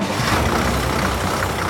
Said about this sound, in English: Bulldozer's engine revved. The machine lurched. And then it shot ahead.